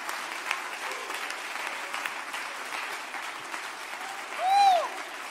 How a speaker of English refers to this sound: Clap your hands a little bit. Praise them a little bit.